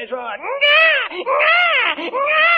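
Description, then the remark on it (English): A baby cries loudly in long, high, wavering wails, three or four rising-and-falling bursts with brief catches of breath between them, heard alone without any talking. “I think it's time to burp the baby.”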